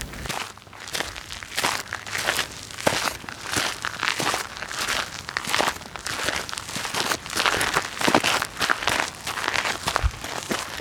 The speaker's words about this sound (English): After our forest walk, we went down to the small beach outside of the cottage, walking along the water through the sand and rocks.